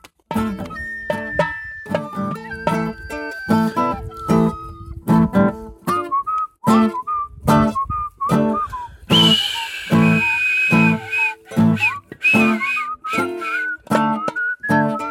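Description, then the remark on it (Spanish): A person whistles a canary imitation: rapid, fairly loud chirps, warbling trills and sliding high notes that continue for about fifteen seconds, with no talking. “Otro tipo de silbido.”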